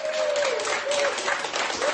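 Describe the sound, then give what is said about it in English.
Hospital staff clap together in steady, sustained applause as a 90-year-old woman leaves hospital after receiving Pfizer's COVID vaccine, dense and fairly loud, with a few faint voices mixed in beneath the clapping. “Staff clapped as 90-year-old Margaret Keenan left hospital”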